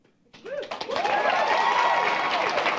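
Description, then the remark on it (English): After a brief quiet moment, an audience breaks into steady applause that swells and holds, with scattered cheers and whoops rising over the dense clapping. “Based on that applause.”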